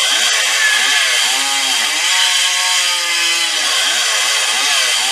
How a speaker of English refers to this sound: Chainsaw.